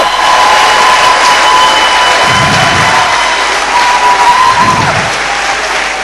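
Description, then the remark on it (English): An audience gives the Lord a clap offering, clapping and cheering loudly and steadily, a dense wash of hand claps with shouts and whoops mixed in, sustained for several seconds without spoken words. “Let's give the Lord a mighty clap offering.”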